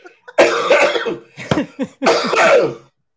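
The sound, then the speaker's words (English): A person coughs loudly, turned to the side of the microphone: a raspy fit of hacking coughs, a short pause with a brief catch of breath, then a second harsh burst of coughs. Nobody speaks. “Can you just cough more loudly directly into the microphone?”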